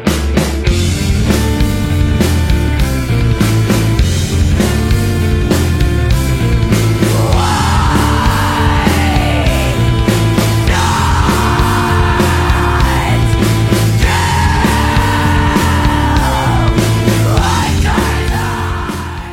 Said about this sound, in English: she'll just let out like a really monster scream in the middle of nowhere.